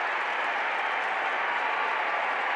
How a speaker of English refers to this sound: And maybe the most important part, and listen to the crowd acknowledging Nickeil Alexander-Walker. Well, even Danny Ainge is up on his feet there as well.